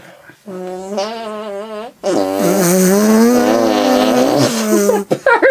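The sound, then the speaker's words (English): Musical arm farts: buzzy, wavering tones that slide up and down in pitch, a short run followed by a longer, louder one, then a few quick sputtering bursts at the end. “I like to end the show with musical arm farts, if you care to join me.”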